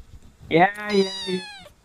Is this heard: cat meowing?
yes